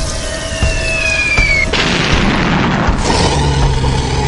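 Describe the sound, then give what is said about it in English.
A high whistling hiss builds, then a soda bottle bomb made from a 2-liter bottle of peach soda, thrown out the door of a moving van, bursts with a sharp boom, followed by a rough, spraying hiss and a second thudding pop, with no voices. “The fizzy bomb is armed.”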